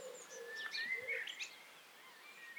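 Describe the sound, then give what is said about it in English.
A cuckoo calls softly in Suffolk, England, its low hollow notes repeating amid bright, chirping birdsong outdoors, with no voices present. “This time last year, there was also a cuckoo in my village, as I recorded in my nature notebook for The Times.”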